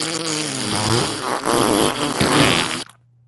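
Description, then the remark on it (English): A long, loud, sputtering fart rumbles for nearly three seconds with a buzzy, wavering pitch, then cuts off abruptly into a faint low hum. “Sounds like someone had Taco Bell.”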